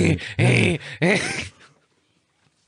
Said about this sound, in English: Two dogs we don't want. Anybody wants them, come get them. Yeah, so if you hear whining, the dogs are in the cage.